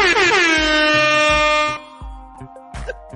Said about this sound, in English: This man earned it. Give him his air horn.